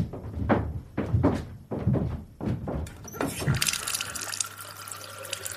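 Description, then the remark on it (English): A run of five or six wet splashes and thunks in quick rhythm as someone splashes water on their face, then a tap turns on and water runs steadily into a sink, fairly loud. “I'll get you water. I wouldn't mind just splashing my face.”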